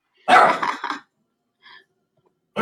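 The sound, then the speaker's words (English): A dog barks loudly in a quick burst of a few yips, then a faint short sound follows and another bark starts at the very end. “I couldn't hear you with your dog.”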